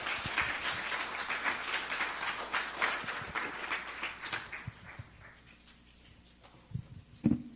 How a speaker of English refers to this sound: So let's give the cast a hand clap as they come forth.